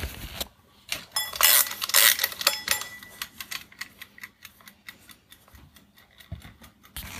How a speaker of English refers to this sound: Let's just wind the timer up.